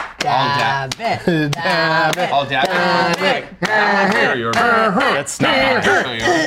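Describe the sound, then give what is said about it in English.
A crowd chants loudly in unison, rhythmic bursts of many voices punctuated by sharp claps or stomps, with cheering rising between the chanted phrases. “Okay, I love a chant. Thank you for that cheer.”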